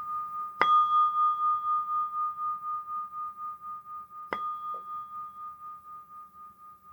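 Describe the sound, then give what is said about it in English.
A meditation bell is struck twice to begin a short mindfulness meditation for the new year, about four seconds apart, each strike ringing into a long, steady, shimmering tone that hums on through the quiet without fading away. “And I'm going to ring in with the bell.”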